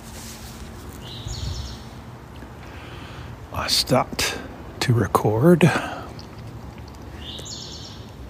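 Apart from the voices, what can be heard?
hawk calling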